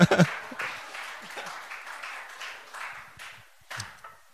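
A church audience breaks into light, scattered applause for the pastor, a soft wash of clapping that holds steady for a few seconds, with a brief louder swell near the end.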